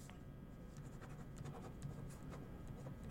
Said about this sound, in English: All right, typing it into the joke bot.